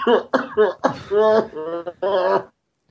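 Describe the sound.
A run of throaty, strongly voiced coughs, about half a dozen in quick succession, close and loud, the later ones drawn out into groaning hacks before stopping abruptly.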